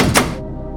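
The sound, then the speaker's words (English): A door opens with a single solid thunk as the latch releases, followed by a short fading resonance. No voices are heard. “The door opened and”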